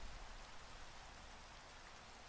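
Steady rain pours down in a dense, even hiss that fills the whole clip, with a low rumble underneath and no voices.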